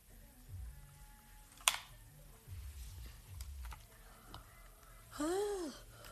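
Near the end comes a short, squeaky yawn whose pitch rises and then falls, heard close up over a low background hum, after a sharp click earlier on.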